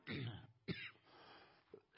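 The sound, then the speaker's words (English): Two rough, forceful coughs from a person fighting off a cold, followed by a softer breathy rasp and a quick throat-clearing catch. No talking happens during the coughs. “I'm fighting getting a cold or something or other, so we all bear with me a minute. Maybe it won't break into a coughing fit.”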